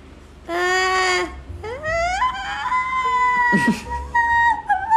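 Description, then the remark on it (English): A voice imitates a loon's call with long, wavering, high-pitched wails that rise and slide between notes, loud and sustained, with a brief pause between the first cry and the rest. “That's my loon sound.”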